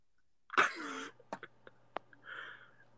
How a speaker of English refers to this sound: Enough with the burping. Enough with the burping.